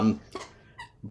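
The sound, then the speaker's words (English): A female dog chews a squeaky toy, giving a few short, high-pitched squeaks spaced unevenly across about a second, with a brief low voice-like sound at the start. “It's so exciting that even my dog with the chew toy is trying to make noise with how excited she is about that matchup.”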